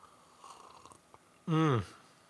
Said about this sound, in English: Let me have a sip, and we'll talk briefly about some events, and then I'm gonna get the heck out of Dodge.